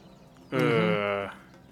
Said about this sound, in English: That's the bird.